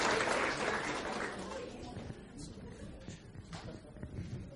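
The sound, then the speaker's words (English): Audience applause, a dense wash of many hands clapping that starts strong and gradually thins out over a few seconds, with faint crowd murmur underneath. “Round of applause, everybody, round of applause.”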